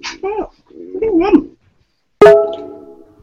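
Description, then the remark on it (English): A dog lets out odd, wavering whines and yowls in two short bursts, followed by a sudden loud, sharp sound with a lingering ring that slowly fades. “Is that weird noise of the dog?”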